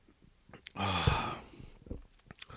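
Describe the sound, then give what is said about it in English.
A fairly loud slurping sip of a drink lasting under a second, noisy and airy with a whistling edge, followed by a few soft mouth clicks and a quiet swallow. “I got to have a little sip here.”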